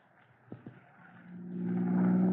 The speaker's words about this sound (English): Well, I must say, Private Collins, I never dreamed to be speeding through the streets in Chief Cody's own car one day.